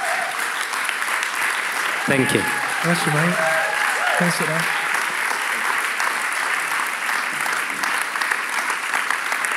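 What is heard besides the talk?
audience applause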